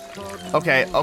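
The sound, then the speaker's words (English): A hand water pump is aggressively cranked in a few quick, squeaky strokes while water pours out, fairly loud, with a voice briefly audible alongside. “It's like if you activate this water pump, he starts just, like, aggressively cranking water.”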